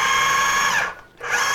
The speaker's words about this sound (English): And I'm pulsing that because if you just keep running it, then it just chops up the same stuff over and over until it's really fine.